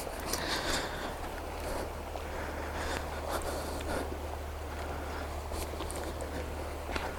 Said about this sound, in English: But for now, I just get to enjoy the sound of those waves crashing against the shore. And enjoy that view.